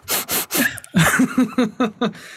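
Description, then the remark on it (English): A voice imitates Frank Zappa's wheezy, asthmatic sniffing: a few long, breathy snorts followed by a quicker run of short, raspy sniffs with a slight vocal whine, fairly loud. “Here's the asthma of Frank Zappa sniffing you.”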